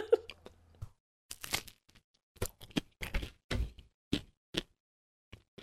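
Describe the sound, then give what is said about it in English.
Someone crunches into crisp toast, a series of sharp, irregular crackling bursts with short pauses between chews, fairly loud and with no talking. “Can you hear it? Yeah, nice and crunchy. Nice and crisp.”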